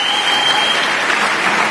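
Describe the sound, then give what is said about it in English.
Loud, dense applause from a Democratic audience at a New Hampshire dinner, after Democratic leader Hakeem Jeffries spoke about George Santos no longer being a member of Congress; a steady wash of many hands clapping at once with no individual claps standing out, sustained throughout; a faint high steady tone runs underneath for the first part. “that's the biggest applause he's ever gotten before a Democratic audience.”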